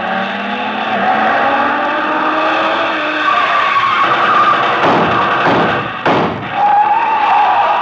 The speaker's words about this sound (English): Speeding toward the same destination is another car.